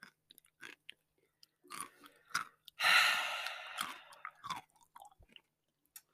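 Someone chewing on a pickle close to the microphone: irregular wet, crunchy bites and smacks, with a longer breathy, sigh-like burst midway through. No one speaks.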